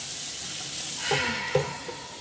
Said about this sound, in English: Well, let me get some water because I'm like fucking running around. I'm thirsty now.